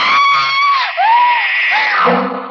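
A woman in bed screams in terror as a knife slashes down at her, loud, one long shrill cry that breaks for an instant, then rises and wavers again before trailing off.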